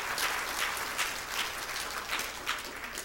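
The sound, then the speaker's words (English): An audience at a church service applauds steadily for everybody who came and prayed that morning, a dense wash of many hands clapping at an even, sustained level for a few seconds with no voices standing out. “Let's give everybody applause.”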